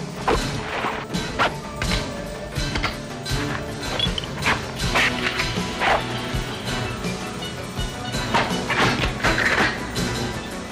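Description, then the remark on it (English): Loud, layered monster growls, snarls, gurgles and guttural howls from a monster film overlap one after another, with barking-like bursts and occasional heavy thuds, filling the whole stretch without any talking. “For a monster film, all these guys howling and growling and snarling and gurgling, it's awesome.”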